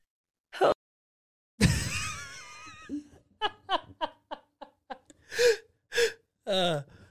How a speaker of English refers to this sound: So, and you're coughing. You have bronchitis.